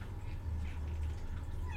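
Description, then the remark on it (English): A cat meows as it is let into the room, a drawn-out cry with a rising pitch at the end, heard over a steady low hum with no talking. “As I let a cat in here.”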